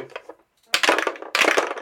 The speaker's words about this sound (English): So, how do you just... let's roll dice. I'm going to roll dice again. I want the yellow one. I want that one.